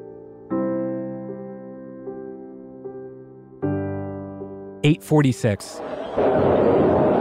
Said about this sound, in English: That was an explosion. Flight 11 crashes into the North Tower of the World Trade Center. An FBI informant taking part in a sting operation at the Marriott World Trade Center between the Twin Towers serendipitously captures this audio.